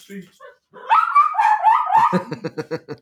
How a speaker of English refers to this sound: I'm like, why is the dog crying? No, go out.